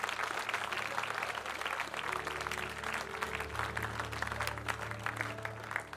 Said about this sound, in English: Come on, give a clap offering to our King.